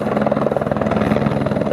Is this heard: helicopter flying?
yes